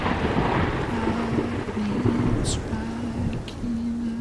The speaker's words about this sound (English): And again and again and again. It's a lot of lightning.